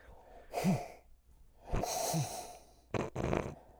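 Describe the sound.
A voice imitates Darth Vader's breathing: about three heavy, raspy breaths with a hissing, airy quality and a low groaning undertone, fairly loud, with no talking.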